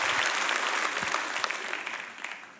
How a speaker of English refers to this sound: Clap your hands if you would say amen at every campus.